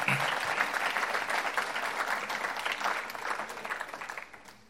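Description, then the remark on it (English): An audience gives a speaker a big round of applause: a steady, dense round lasting several seconds, the many overlapping hand claps gradually thinning and fading toward the end. “Let's give Jack a big round of applause.”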